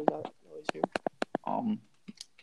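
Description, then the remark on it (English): A quick run of about six crisp clicks on a Chromebook laptop, irregularly spaced, with bits of talking just before and after the tapping. “You're just clicking on a Chromebook.”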